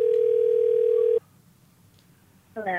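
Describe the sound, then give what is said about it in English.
A steady, loud telephone dial tone hums for just over a second as a call to a friend is placed, then cuts off abruptly. A short quiet gap follows before a voice begins speaking at the very end. “So now it's time for a segment of the podcast called Phone a Friend, where we do just that. Phone a friend.”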